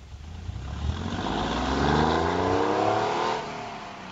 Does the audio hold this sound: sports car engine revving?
yes